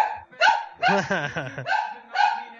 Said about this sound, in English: Well, the dog's going to be in the background